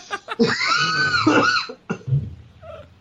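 A person gags and coughs up close, starting with short sputters, then a long, strained retching groan, followed by a couple of brief rough coughs.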